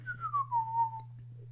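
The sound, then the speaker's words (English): A single whistled note glides slowly downward, fairly clear, from someone cleaning up in a dank place with leaky pipes, at the opening of a Lionsgate and Screen Gems film presented by Tarantino, over a steady low hum with a few faint knocks and rustles. “Someone is cleaning up and whistling at the same time.”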